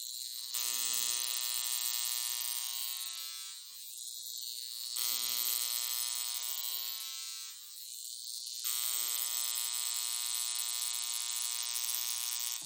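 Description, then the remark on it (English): A steady electric buzz with strong harmonic lines hums continuously for about twelve seconds, dipping twice in loudness before returning to full strength, from a high frequency skincare wand running. “So this is how high frequency works.”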